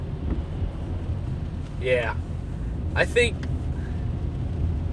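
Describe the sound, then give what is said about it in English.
A steady low rumble fills the background inside a car, with two brief high warbling tones rising above it near the middle. “I could just be talking to myself in my car.”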